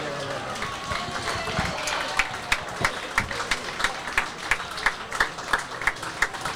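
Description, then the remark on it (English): A large stadium crowd at a football match roars steadily after Emi Martinez and Messi win a penalty shootout against France, and partway through a rhythmic, evenly spaced clapping chant emerges from the mass of voices, fairly loud and continuous throughout. “He's waving. People are cheering.”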